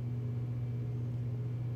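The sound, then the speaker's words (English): A garbage truck's engine rumbles steadily outside, a constant low droning hum with no breaks, fairly quiet with no voices. “One other thing that literally was just put in my mind, but I got distracted because there is a trash truck outside.”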